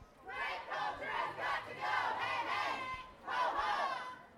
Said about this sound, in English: Once the march started, many groups broke into chants.